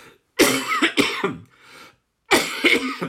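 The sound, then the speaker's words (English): Loud coughing in two harsh fits of several rapid hacks each, separated by a brief breathy pause, with no talking. “Another cough coming.”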